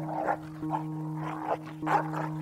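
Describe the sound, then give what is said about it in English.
An aggressive dog on a road past a farmhouse barks in short, sharp bursts as it charges, about four of them at uneven intervals, over a steady low droning hum. “I raised the stick and the dog charged.”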